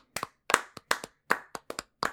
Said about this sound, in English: Do we clap here? Yeah, let's clap.